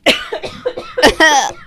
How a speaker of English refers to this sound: You're not coughing into the mic like that, are you? Jesus Christ. No, I'm holding the mic away from me. Sorry, y'all. She's on a Bluetooth headphone in my ear right now, coughing.